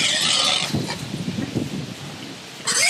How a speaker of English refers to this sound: What is this? Pig squealing. Okay, great.